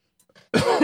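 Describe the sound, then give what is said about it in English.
A harsh cough bursts out after a few faint breathy rasps, with a rough throat-clearing quality trailing off near the end. “Get in front of a microphone and I'm, you know, just about to hack up a lung.”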